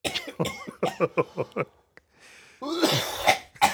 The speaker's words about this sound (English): But he stifles his cough when he's at home. This is how well he stifles it.